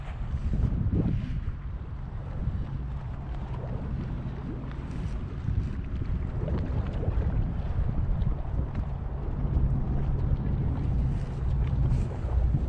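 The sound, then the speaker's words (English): Water from the East River churns and bubbles up in a steady, low rumbling rush, with gusty wind noise layered over it and no voices. “Bubbling up from the East River.”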